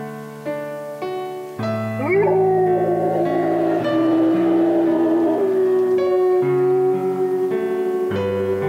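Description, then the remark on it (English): A golden retriever named Oscar howls along to piano chords, its voice sliding upward and then holding a long, steady, wavering note while the piano keeps playing underneath, fairly loud. “Well, Oscar can sing on key while Pam plays the piano.”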